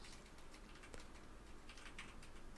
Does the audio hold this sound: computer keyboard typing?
yes